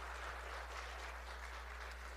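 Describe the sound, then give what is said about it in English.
Steady crowd applause from a church audience as a couple comes up onto the platform, a dense wash of many hands clapping at an even level for a couple of seconds, with no voices standing out over it. “Would you just give her a round of applause as they come?”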